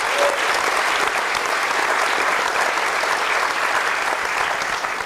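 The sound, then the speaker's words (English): An audience at the Cameo in Edinburgh applauds the venue team, a dense, steady wash of many hands clapping that stays loud and even from start to finish, with no distinct voices rising above it. “But please, applaud them.”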